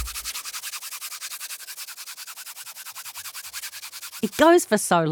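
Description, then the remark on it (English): Dry, hissing rubbing strokes repeat rapidly and evenly for about four seconds, like sandpaper worked back and forth over a wall, before a voice briefly speaks at the end. “It's like you're just sanding the walls before you put the top coat on.”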